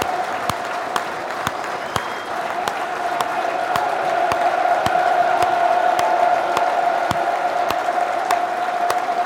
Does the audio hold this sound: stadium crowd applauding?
yes